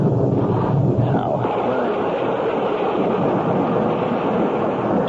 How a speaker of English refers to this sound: Only I can't see. Damn rain makes it impossible to see.